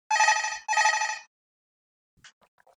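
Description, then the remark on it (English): A hotel room telephone rings in two loud, buzzy electronic bursts, one right after the other, then stops, leaving silence and a few faint clicks and handling sounds. “Oh, somebody calling you in the hotel already.”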